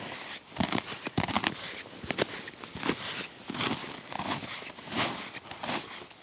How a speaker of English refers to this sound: I have to make sounds with the snow and ice. And there's icy snow and soft, crunchy snow. It's not quite cold enough to squeak. The crunch of ice crystals.